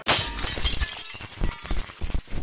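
Neighbours hammering on a wall: a sharp, crashing first blow followed by a run of dull, irregular thuds and knocks that keep going without any voices.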